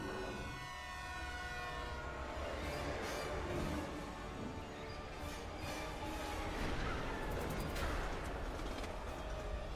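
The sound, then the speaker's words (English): A subway train rumbles with a sustained, blaring horn whose steady tones ring out over heavy mechanical noise and clattering, continuous and loud throughout, in a Superman movie scene. “We guess the train's coming.”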